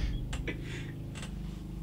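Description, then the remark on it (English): A motorcycle engine, revved hard by its rider, rumbles at a steady, low throbbing pitch, with a few brief hissy clicks on top and no one talking. “Just listen to the dude on the motorcycle.”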